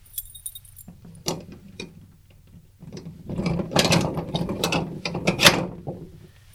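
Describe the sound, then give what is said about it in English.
Keys jangle, followed by the lock of a shed at Lamb Spring being worked open with metallic clicks and a ratcheting turn, then more rattling of keys and mechanism over several seconds. “One of these keys.”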